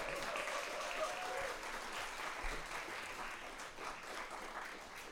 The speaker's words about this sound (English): So with all the love and the grace that's in your heart, can you give a round of applause to Pastor Reggie Robertson?